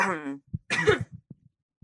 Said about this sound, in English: Do you need to have a proper cough? Feel free to have a proper cough.